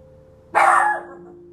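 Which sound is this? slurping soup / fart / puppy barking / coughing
puppy barking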